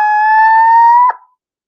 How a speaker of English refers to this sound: And so I'll give them a scream. And this is the scream of a barred owl.